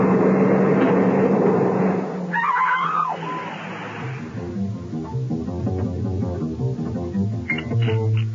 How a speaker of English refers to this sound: Hey, watch out for that car!